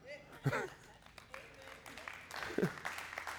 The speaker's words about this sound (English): Got quiet. Clap on that.